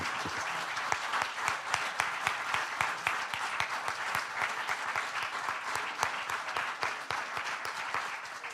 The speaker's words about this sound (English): Let's stand together and give the Lord a great hand clap of praise. Did y'all hear the power in that hand clap? That sounded like absolute authority. Let's do that one more time. Let's give the Lord a hand clap.